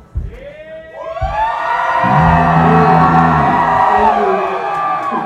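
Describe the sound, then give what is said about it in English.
A large audience screams together on request, many high voices swelling in within a second and holding a loud, sustained, overlapping roar until the end. “So, can I have a scream, please, from everybody right now?”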